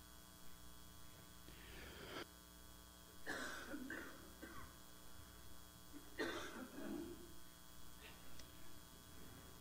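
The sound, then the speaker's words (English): A few separate harsh COVID coughs into the microphone, with pauses between them, over a steady low electrical hum and faint background noise. “COVID cough is gross.”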